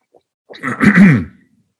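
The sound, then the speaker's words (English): A single gravelly throat clearing lasting under a second, rough and voiced with a brief cough-like burst, followed by silence. “Now, forgive me for my little coughing thing here.”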